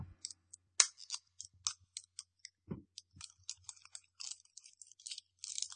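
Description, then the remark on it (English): Crinkly plastic candy packaging being tugged and fumbled with by someone struggling to open it, a busy run of irregular rustles, snaps and crackles with short pauses, no talking. “You gonna be able to open it?”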